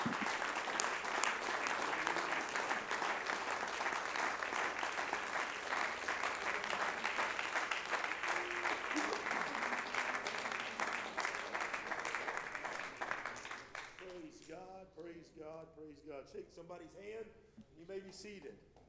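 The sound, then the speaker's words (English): An audience gives a hand clap of praise to Jesus, clapping steadily together for about fourteen seconds, a loud, dense wash of many hands, before the clapping fades and a man's voice takes over speaking. “Can you give him a hand clap of praise right now?”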